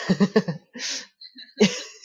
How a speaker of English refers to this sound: I've been coughing over here.